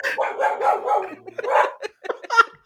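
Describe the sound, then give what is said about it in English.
A dog indoors in a hallway barks in a quick, excited string of yaps and barks, turning its head in different directions and barking at different windows, with short pauses between bursts, loud and without other voices. “For some context, he's literally in the hallway, turning her head in different directions and barking at different windows.”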